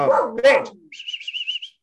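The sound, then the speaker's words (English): A male dog lets out two loud barks in quick succession, followed by a rapid series of six or so high, thin whining yelps that trail off. “Sorry, my dog just barked.”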